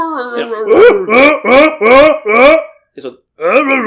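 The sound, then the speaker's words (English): A voice imitates the raspy, gargling growl of a Tusken Raider in a rapid series of about six loud, harsh bursts with a rough warbling pitch, a brief pause, then one more burst. “Yeah, and there's it's all like a dog gargling marbles.”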